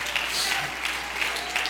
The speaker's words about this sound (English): It's a Hallel praise. Oh, I think we ought to clap our hands and praise Him.